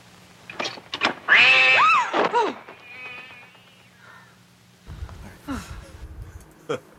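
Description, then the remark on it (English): A cat being tossed through a door: a loud, wavering yowl rises and falls, then after a quiet stretch comes a heavy thump with scuffling and a brief squeal. “Okay, yes, in case you were wondering, that sound at the end of the clip there is a cat being tossed at... being fucking Joe Montana through the door, man.”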